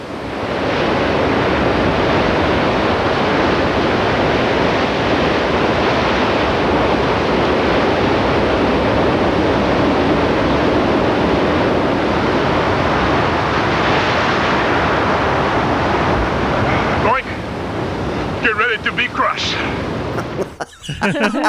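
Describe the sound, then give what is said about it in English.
Loud, continuous roar of ocean surf crashing against rocks, a dense wash of churning water that surges and swells, breaking up into splashes and gusty wind near the end. “I want you to take a good, long listen on how these waves are pounding against the rocks.”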